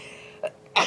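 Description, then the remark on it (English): A quick, sharp sneeze bursts out, preceded by a brief catch of breath, with no talking around it. “Bless you.”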